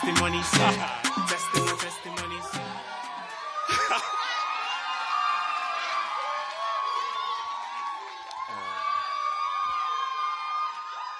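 An audience in church bursts into rapid, overlapping applause to welcome a man coming up to give his testimony, then the clapping gives way to a sustained wash of cheering, whoops and excited shouting from many voices that carries on loudly to the end.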